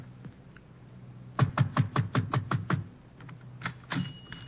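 A fist pounds on the wooden door of a small, dark tobacco shop on a narrow street near the waterfront in Trieste, in a quick, steady burst of about eight heavy thuds, followed by a pause and a couple of scattered knocks. The blows are loud, with no talking.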